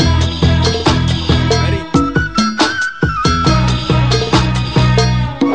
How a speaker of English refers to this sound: It's just a great mashup, you know, of two different type of music. I'm just going to play a little bit off this whole thing.